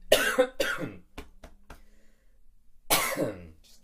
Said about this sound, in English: I'm keeping this in. I'm keeping it in, ladies and gentlemen. You just heard me cough.